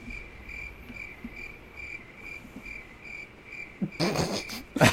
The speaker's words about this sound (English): Can you cut some crickets into that pod? Yeah, could you just toss some right in there?